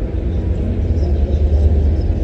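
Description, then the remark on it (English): A train rumbles steadily underneath a station, a deep, continuous low roar with a broad hiss on top that holds an even loudness throughout. “Ooh, you can even hear the train in the background zipping underneath the station.”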